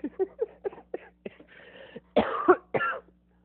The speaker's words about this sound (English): Your cough. I'm fucking dying, bro.